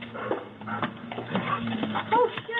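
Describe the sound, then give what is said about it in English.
A dog whimpers and gives a few short, high yelping barks on a doorbell camera video, the whines rising near the end, over a steady low background hum. “Lady, if your dog just starts running, first of all, that dog probably, she's probably going to get in trouble because the other lady that's walking her dog most likely feels that the other dog was going to attack it.”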